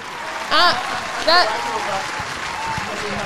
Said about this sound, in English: I give a round of applause.